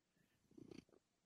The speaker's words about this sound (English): ooh, nice purr.